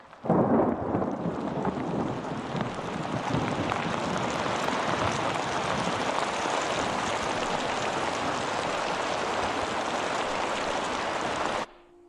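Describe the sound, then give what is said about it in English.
Heavy rain pours down in a steady, dense roar, with a deep rumble of thunder rolling in near the start. It continues unbroken and fairly loud before stopping abruptly at the end. “And the rain came, and they start walking back through, and the rain comes”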